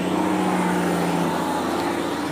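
A bus engine drones steadily as it drives, a loud, continuous rumble with a low hum that holds level for the whole couple of seconds, no voices present.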